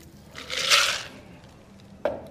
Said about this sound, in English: And then I'm going to take my strainer, strain the mixture in the mixing tin into the glass.